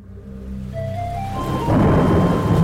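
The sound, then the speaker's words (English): A thunderstorm swells up: low rolling thunder grows louder as heavy rain comes in with a steady hiss that thickens to a full downpour by the end. No one speaks. “This week, we'll be learning some of the secrets of rain.”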